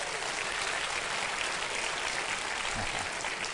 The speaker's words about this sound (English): Is that rain I'm hearing? Praise the Lord. Our prayers have been answered.